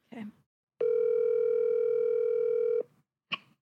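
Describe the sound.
A phone call rings out over a speakerphone: a single steady, mid-pitched electronic ring tone holds for about two seconds, with short bursts of noise just before and after it.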